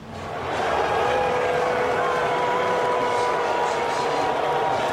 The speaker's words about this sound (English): Mixed reaction there. You can hear some in the crowd booing him and even chants of lock him up.